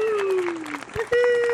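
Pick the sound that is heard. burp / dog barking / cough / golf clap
golf clap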